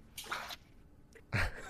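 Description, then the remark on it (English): Water sloshes and splashes inside a teapot in two short bursts, a softer swish followed by a louder slosh with a brief drip between them. No one speaks. “can we get some sploosh splash sounds?”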